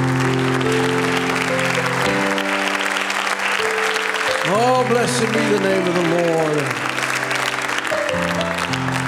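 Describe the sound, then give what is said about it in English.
A crowd applauds steadily with dense, sustained hand clapping in praise of the Lord, while a voice calls out over it and sings a few rising, gliding notes near the middle. “Just give the Lord a hand clap of praise.”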